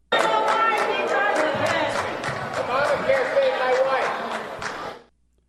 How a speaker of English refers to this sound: He could hardly get a word in there. The crowd, I don't know whether they were chanting, do your job, but that's what they had been chanting in the last round of town halls. Obamacare saved my wife is what the man there at the end said.